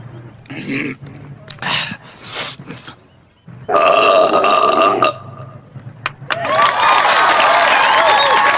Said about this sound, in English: Frankly, I'm not too wild about this next event, but it has become a tradition here at Adams. The belching contest.